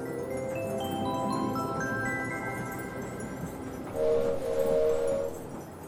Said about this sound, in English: All aboard. Elmo's train is leaving the station. Chugga, chugga, chugga, chugga. Choo, choo.